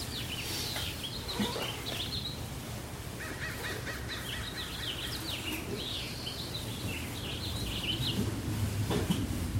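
Birds sing and chirp steadily outdoors around a patio, several calls overlapping in quick repeated bursts, over a constant low rumble of wind.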